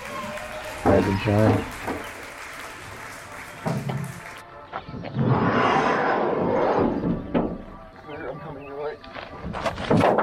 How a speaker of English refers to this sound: So let's clap for Summer Playlist Week 1.